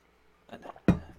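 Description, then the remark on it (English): Someone takes a drink of water: two soft gulps, then a sharper, louder swallow or clink that fades quickly. No one speaks. “Let me drink some water.”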